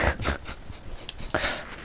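A dog makes soft, faint noises, a few short breathy bursts like snuffling or light panting, with a quiet background and no talking.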